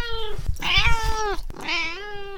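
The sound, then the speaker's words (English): A male cat meows three times in quick succession, the middle call longest and most strained, loud with no voices and only a faint low rumble underneath. “Well, he thought you were a pregnant girl cat nesting under his potting table.”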